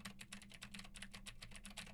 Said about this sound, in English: And now we're about 4 feet away from the Shure MV7X. Now I'm typing on a keyboard with Gateron Blue switches to see how much of my voice versus how much of the keyboard it picks up. And for those who use them, now I am just typing on the sad W keys.